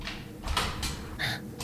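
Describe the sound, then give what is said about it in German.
A sauna door opens in a quick sequence of short scraping, creaking bursts as a man steps out, clearly audible with no talking over it. “In diesem Moment öffnete sich die Tür der Sauna und ein Mann trat heraus.”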